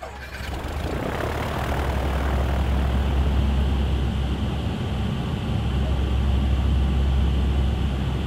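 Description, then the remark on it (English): A loud, steady drone of turboprop engines heard from inside a C-130 transport plane at night: a constant deep rumble with a broad roaring hiss that fills the whole clip without letting up. “The only thing you can see inside a C-130 at night like that is this, the red jump light above the jump door and down on the floor, and there's this hum of the plane”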